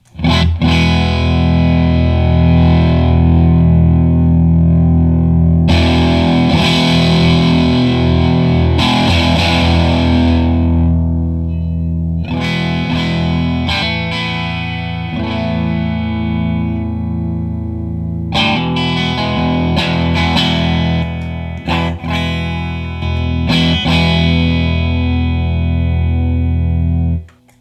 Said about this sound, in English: So that was with the gain all the way down as a comparison with it off, so we could see what it was actually doing. Right. It's a softer distortion. You know, it's not as gritty.